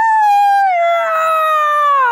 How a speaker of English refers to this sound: That's what … does. She screams. Nice. Like a cat yell.